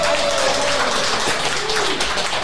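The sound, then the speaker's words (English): A studio audience at the Hot Stove Society Kitchen on Cairo, prompted by an audience motivator, claps steadily: a dense, even wash of many hands at a loud, unbroken level for a couple of seconds, with no voices over it. “I get worried when the audience doesn't clap.”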